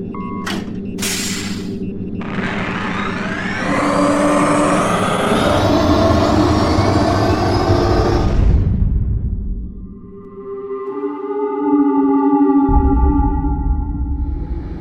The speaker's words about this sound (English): Activate the ionic turbine engines. Full thrust. Aye, Captain.